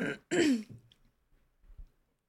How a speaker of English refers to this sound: Did you just clear your throat in preparation for the answer?